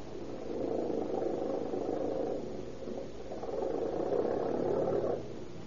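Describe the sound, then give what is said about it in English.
A brand new car's engine runs with a steady low, rumbling drone that surges twice as the car pulls away, with no voices over it. “Come on, slip her into gear and don't make any noise about it.”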